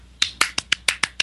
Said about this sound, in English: Bravo, everyone! Hey, clap.